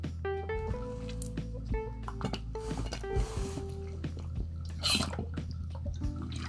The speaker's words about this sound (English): Had to get a sip of water on this one.